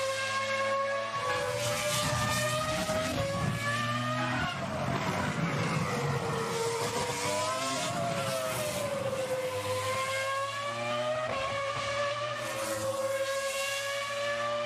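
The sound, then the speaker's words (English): A racing car engine screams at high revs as the driver pushes fast around the Mugello circuit, its pitch rising and dropping through gear changes and corners, including an S-bend. It stays loud and sustained throughout, with no voices. “And I'll tell you what, he was pushing. Yeah, he was. He was fast around it. Oh. Like going around that S is beautiful at Mugello.”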